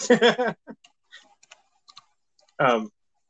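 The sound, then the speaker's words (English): Soft, irregular keyboard clicks tap away at a computer between bursts of talking, a voice before them and another short voiced sound after. The typing is quiet and sparse. “that was it typing away.”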